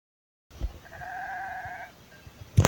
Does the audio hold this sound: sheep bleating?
yes